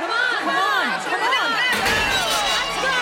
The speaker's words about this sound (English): Oh, what's the shouting for? The other half of the city is rising up.